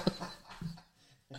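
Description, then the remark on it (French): A dog pants softly as it arrives, in a few short, breathy bursts with brief pauses between them, fairly quiet, with no one talking. “Là, le chien arrive, puis t'as le place.”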